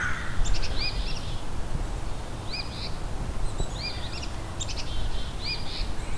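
Several crows caw repeatedly in harsh, overlapping bursts, sounding agitated, over a steady background of low outdoor rumble. No one speaks.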